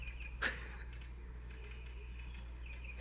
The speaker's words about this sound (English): It barks, too? That was another bird.